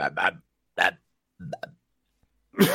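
A few short, abrupt burps at uneven intervals, close and fairly loud, each a quick throaty gulp of air with no talking around them.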